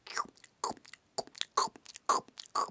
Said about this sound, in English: First, she bit into the sandwich.